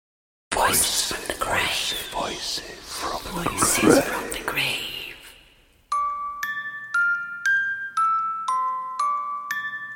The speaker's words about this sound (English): The bell on the roof of the judge's house begins to toll.